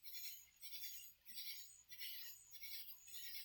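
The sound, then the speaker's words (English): Katydids and crickets chirp in dense, high-pitched buzzy pulses, swelling and fading in a steady rhythm roughly every half second, with no voices present. “See how many insects you can hear. We got katydids, we got the crickets.”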